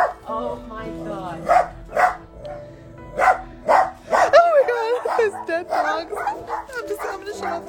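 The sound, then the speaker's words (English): A dog barks again and again inside an animal hoarder's home during a rescue, loud sharp barks in an uneven rhythm mixed with higher yips and whimpering, with people's voices faintly beneath. “Is there a dog in there?”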